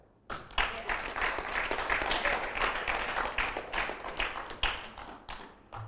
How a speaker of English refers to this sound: I think we should clap.